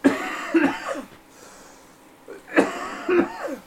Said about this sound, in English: And I have this cough. It's like a Mandela effect. It is. It just won't go away.